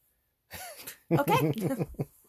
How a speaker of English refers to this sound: Also, why is it so close to you? Because you're going to be coughing.